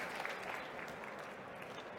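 Steady audience applause for a performer on stage about to play a piano set up there, a dense wash of many hands clapping at an even, sustained loudness for the full two seconds, with no voices standing out.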